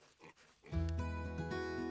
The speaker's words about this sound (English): We don't want to disturb the piglets. And they're in the best place, they're next to their mum, keeping warm.